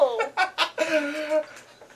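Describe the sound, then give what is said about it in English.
A few loud chicken clucks come in quick bursts, then stretch into one longer, drawn-out squawk before trailing off into quieter sounds. “Or I'll release the chickens again. No, more chickens, please.”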